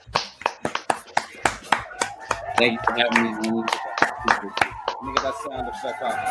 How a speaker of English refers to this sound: Yeah, yeah, he deserves a round of applause like that.